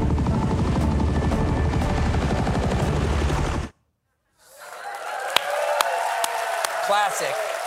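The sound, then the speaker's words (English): A helicopter's loud, rapid rotor thumping roars over the middle of the ocean near a U.S. Navy warship in a Jack Ryan scene for a few seconds, then cuts off abruptly into a brief silence before quieter, splashy water sounds with sharp clicks follow as a man is thrown out of the helicopter. “That really looks like you fell out of that helicopter.”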